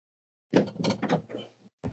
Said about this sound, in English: You can hear him banging about there in the fridge.